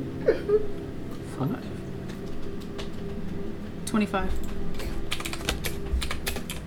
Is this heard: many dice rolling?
yes